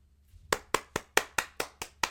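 A single pair of hands claps about eight times in a quick, steady rhythm, sharp, with no voices and nothing else behind it.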